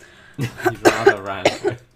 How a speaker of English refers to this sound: Sorry for the coughing and the horrible post-flu voice.